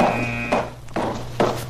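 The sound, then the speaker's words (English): A steady electronic buzzer from a metal detector concealed in a doorway drones through the whole clip, set off by someone carrying a large metal object. It has a low harmonic hum and a thin high whine that fades after the first half-second, while three sharp footstep-like knocks land over it. “Where did that buzzer come from? That's the metal detector concealed in the doorway, sir.”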